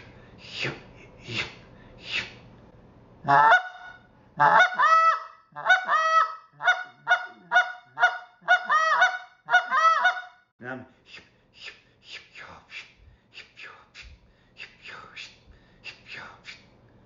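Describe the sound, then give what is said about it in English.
A goose call runs through a series of clucks and low moaning honks, a fast rhythmic burst in the middle flanked by softer, breathier notes, clear with no talking. “So that's clucking and moaning.”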